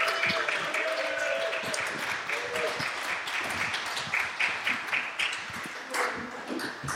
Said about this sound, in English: Right, ladies and gentlemen, big round of applause and welcome to the stage,